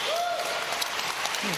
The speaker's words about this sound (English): By the way, I question the authenticity of this applause here, honestly, because like it doesn't look like anyone here is clapping.